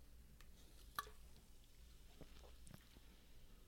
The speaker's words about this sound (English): I'm going to take a sip straight from the can.